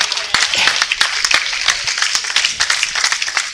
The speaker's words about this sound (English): Go ahead and give God a hand clap of praise.